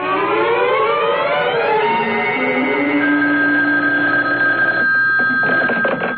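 A loud, continuous electronic telephone ring in an attorney's office, with warbling, sliding tones that settle into a steady pitch, with no voices over it.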